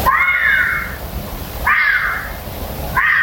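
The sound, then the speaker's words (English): An owl screeches three times at night in a slow, steady rhythm, each call a harsh, raspy hiss lasting about a second. The screeches are loud, with no voices present. “A lot of you who have obviously just, you know, got more life experience than us have suggested owls.”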